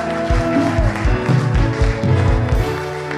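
A crowd claps their hands together in praise to Jesus in a loud, sustained burst of applause with a steady underlying rhythm, mixed with sustained tones and a busy wash of background noise.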